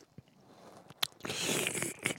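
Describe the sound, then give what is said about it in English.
A slurp of hot Folgers Black Silk coffee: a short lip click, then a hissy, airy sip lasting under a second, ending with a soft wet smack. No talking. “Let's get a slurp in, get serious.”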